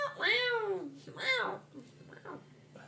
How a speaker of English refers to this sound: It's like cats, like, fighting outside.